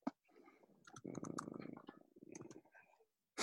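Scattered, uneven keyboard clicks tapping away, mixed with a low, rumbling murmur that swells through the middle and fades near the end.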